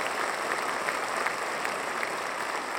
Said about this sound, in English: Now the lights go down. The conductor of the New York Philharmonic, Jaap van Zweden, he walks out, everyone applauds.